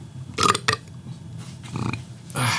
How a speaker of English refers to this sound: I burp when I'm nervous.